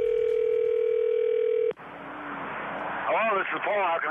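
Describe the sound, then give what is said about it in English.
A steady telephone line tone hums for under two seconds as a prank phone call is placed, then cuts off abruptly into a noisy open line, where a voice begins speaking faintly near the end. “Let's listen into today's phone tap.”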